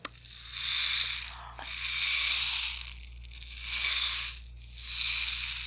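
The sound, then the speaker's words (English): A rain stick tipped back and forth four times, each pass a rising and fading wash of bright, dense pebbly rattling lasting about a second, with short pauses between. No one talks. “And I've always thought that it sounded something like a rain stick.”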